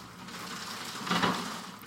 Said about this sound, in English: Did you hear that? Yeah. That's the wire. It's lashing the house.